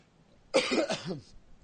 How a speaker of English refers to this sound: My coughing is a problem.